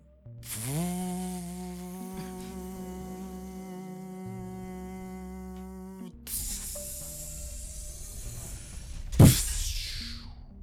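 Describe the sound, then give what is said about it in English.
A sci-fi lift mechanism, Lift 7 aboard the ship Bellerophon, transporting to the command center, powers up with a rising electronic whine that settles into a steady harmonic hum, then shifts to a rougher rumble before ending in a sharp burst of hiss. “You have selected command center. Commencing transportation.”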